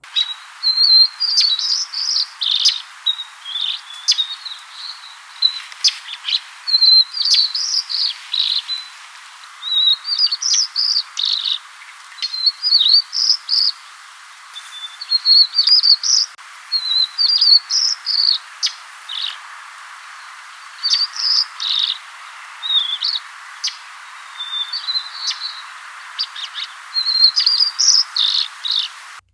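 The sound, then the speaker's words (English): A white-crowned sparrow sings its song phrase over and over, clear, while another bird's sharp chips pepper the gaps between phrases throughout. “The melody in this recording is the white-crowned sparrow song.”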